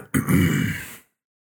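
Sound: throat clearing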